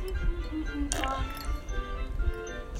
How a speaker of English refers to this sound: I'm just drinking some water.